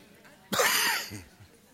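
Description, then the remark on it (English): A single sharp cough bursts out abruptly, harsh and breathy, then trails off into a rough fading exhale against a quiet background. “By the way, if I'm coughing, I am recovering.”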